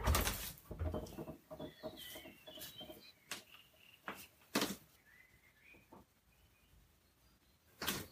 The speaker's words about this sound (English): I heard lots of blackbirds, but no owl.